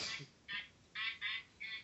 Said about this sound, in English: Is that a fucking duck I heard in the background?